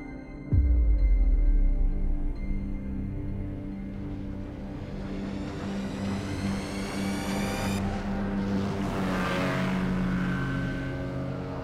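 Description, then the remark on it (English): A motorboat engine towing a water skier in the Californian sun starts with a low thump, then roars steadily and loudly as its pitch climbs while it speeds up. A hissing rush like spray joins in near the end. No voices. “As the motorboat roars and the spray flies, the water skier squints into the Californian sun.”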